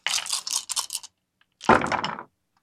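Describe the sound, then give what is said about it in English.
Eight six-sided dice rattle and clatter across a hard surface in two bursts: a rapid scatter of clicks lasting about a second, then after a short pause a louder, denser tumble that quickly settles. “Oh, my dice went in.”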